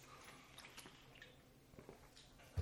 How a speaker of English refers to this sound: Take a swig of water as well.